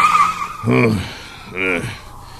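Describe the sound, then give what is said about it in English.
Tires squeal sharply as a car speeds off, the screech rising in two strong surges over a steady engine rumble, loud, with voice-like tones mixed in. “Come on, let's get in the car, girl.”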